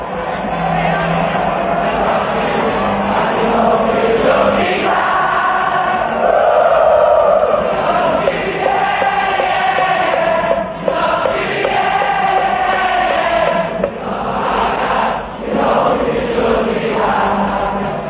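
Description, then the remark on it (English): A huge Liverpool football crowd sings together on the Kop terraces at Anfield, a massed chorus of voices carrying a sustained melody, loud and continuous with a slightly muffled, old-recording quality and no pauses. “The music the crowd sings is the music that Liverpool has sent echoing around the world.”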